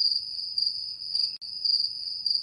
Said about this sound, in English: Just, you know, it's crickets when we say, who wants to take the lead on this? And, you know, and maybe we can insert some funny cricket noises right there.